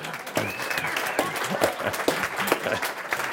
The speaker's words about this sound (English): Thank you. One clap.